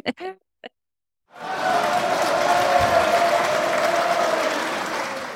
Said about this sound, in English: That's the crowd going wild.